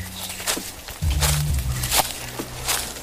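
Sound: footsteps sound effect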